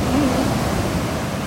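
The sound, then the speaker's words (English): A wave about two feet high curls over and breaks, filling the moment with a loud, steady rush of churning surf and hiss that barely rises or falls. “That's a lot of noise for water curling over 2 feet and falling on itself.”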